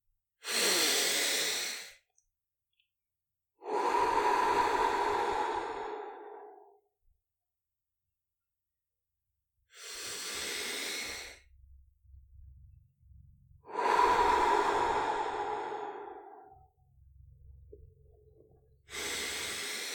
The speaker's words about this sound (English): And I invite you to do 5 long, slow breaths in through the nose and out through the mouth, breathing into your stomach, nice and deep. Let's begin.